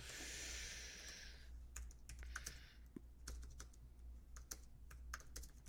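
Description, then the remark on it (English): Quick bursts of typing on a computer keyboard, sharp clicky keystrokes in an irregular rhythm, fairly clear, with a broad hiss fading out in the first second and no one talking. “As people hear my keys.”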